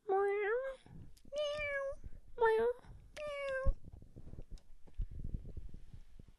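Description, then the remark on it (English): A cat meows four times in quick succession, loud, each call drawn out and tonal, followed by a few seconds of low rustling and background noise. “And as always, we are filmed in front of a live studio audience of cats.”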